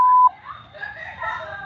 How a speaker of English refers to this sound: After the beep, say something loud.